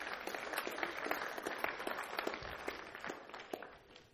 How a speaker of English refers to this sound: Let's give them a clap. Thank you very much, everybody.